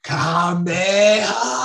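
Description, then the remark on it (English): A person imitates a growl with their voice, learned by mimicking a bear, a dog or Goku yelling on DBZ: two loud, raspy, sustained vocal rumbles, a short one and then a longer one after a brief break, gravelly and low-pitched with no other talking. “Because I have had people ask, like, well, how do you do the growl?”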